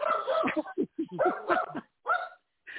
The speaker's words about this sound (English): Yes, he's a very vocal dog, this one. Yes, yes. He loves what you're doing.